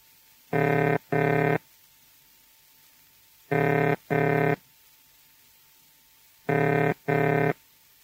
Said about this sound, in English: Ringing tone.